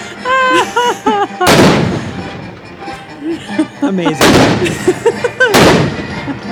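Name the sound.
cannon fire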